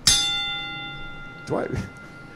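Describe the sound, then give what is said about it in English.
A wrestling ring bell is struck once with a stuttering, hesitating hit, sharp, its metallic tone ringing out and slowly fading before a voice briefly speaks near the end. “Well, no, it sounds like you're hesitating on the bell.”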